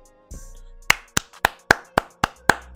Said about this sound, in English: I know my clap is a little lame, but I'm trying to hold back on kind of how disappointed I am for Gail to kind of bring that line of questioning up.